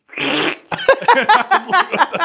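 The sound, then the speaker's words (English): A person makes a short, wet, sputtering fart noise with their mouth, imitating a cat's wet fart, loud, then immediately starts talking. “And I looked, yo, yeah, my wife goes, did he fart? And I was like, yeah.”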